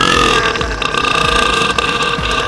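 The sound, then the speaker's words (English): A single extremely loud, prolonged burp from a man who broke the world record for the loudest burp rumbles continuously for a couple of seconds, deep and raspy with a harsh, buzzing tone, with no talking. “There's a guy that broke the world record for the loudest burp.”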